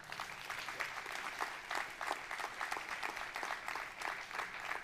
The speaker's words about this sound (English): And I know that you're reluctantly clapping here at the North Platte campus because you're like, what did he just say?